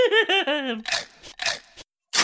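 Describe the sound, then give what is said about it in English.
A short wavering, descending vocal cry gives way to several loud crunching bites on fingers, three quick gnashing bursts followed by a brief silence and one more crunch. “Stop chewing my fingers!”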